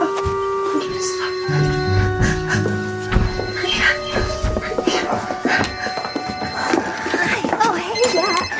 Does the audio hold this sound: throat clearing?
no